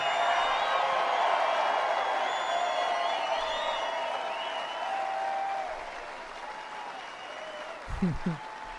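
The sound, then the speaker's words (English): Sustained applause from a large crowd at a political speech fills the whole stretch, dense and steady with scattered whistles and cheers on top, tapering slightly before a brief thump near the end. “The clapping went down, so he couldn't take the drink of water.”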